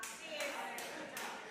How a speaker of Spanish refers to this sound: Gracias a la que aplaudió, bájese del pedestal de creerse que usted sirve.